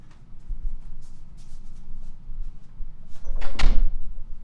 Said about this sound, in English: could you close the door?